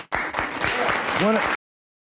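A burst of audience clapping immediately after a speaker speaks, dense and steady, lasting about a second and a half before cutting off abruptly. A brief vocal whoop rises near the end.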